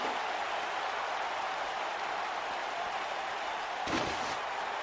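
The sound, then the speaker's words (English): A loud wrestling crowd roars steadily throughout, and near the end a single sharp chair shot by wrestler Kurt Angle cracks through the noise with a hard metallic smack. “Pretty big target for Kurt Angle to focus on with that chair.”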